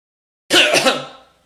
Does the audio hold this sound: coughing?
yes